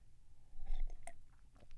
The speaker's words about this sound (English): So I'm going to keep making awkward silences while I take sips of my coffee.